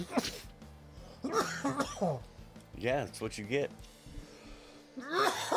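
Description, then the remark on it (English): Someone coughs and clears their throat in a few rough, breathy bursts, with a short stretch of casual talk in between. “You need a cough button.”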